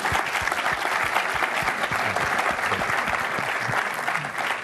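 An audience claps in a sustained round of applause, a dense, steady wash of many overlapping hand claps at even loudness throughout, with no voices standing out.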